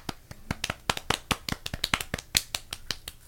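A single person applauds themselves, clapping about fifteen times in a quick, steady rhythm, each clap a sharp, crisp smack of moderate loudness with no voices over it.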